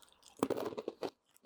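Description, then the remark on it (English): Loud crunching of a crispy sesame sweet potato stick with black sesame seeds, a burst of several crackly bites and chews packed into about a second, with no talking. “So we are also going to try the sesame sweet potato sticks.”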